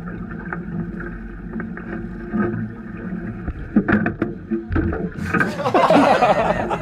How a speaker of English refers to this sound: Here's a video I took in 2014 when I worked for the U.S. Fish and Wildlife Service. We were setting gill nets for paddlefish in South Dakota's White River when the boat hit shore and threw the other biologist into the water.